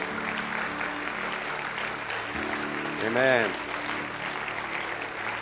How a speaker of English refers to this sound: Come on, let's give the Lord a great clap as we finish, eh?